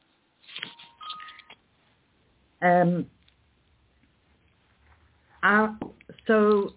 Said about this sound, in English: Say that again. My phone rang. I'm really sorry.